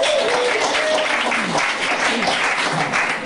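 A crowd breaks into a steady round of applause, dense crackling claps filling the whole stretch at an even, fairly loud level, with faint voices mixed in underneath.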